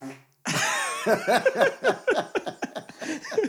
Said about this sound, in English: Hold on, I've got to fart. Wait, listen.